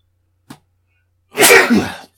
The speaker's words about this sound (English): I'm going to sneeze. Hold on.